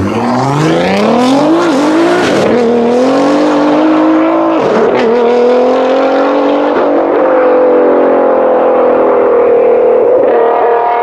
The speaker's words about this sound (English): Scrabanti in his wild GTR Nissan with the massive wings on it. I call it the Kraken. He calls it the Sheriff. It is incredibly fast. When he gets that thing turned up, it's going to run, I believe, somewhere in the high 37 seconds.